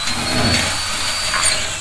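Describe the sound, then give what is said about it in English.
A power drill bores a hole in a locked door, running steadily for a couple of seconds, a loud, gritty grinding whir with a faint high whine. No one speaks. “I'm going to drill a hole in it.”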